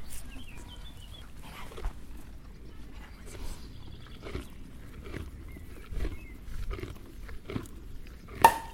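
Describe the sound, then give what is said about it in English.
A horse chews, with irregular crunchy bites and grinding over a low rustling background, ending with one sharper, louder burst. “I'm going to see if I can get a last word from a horse.”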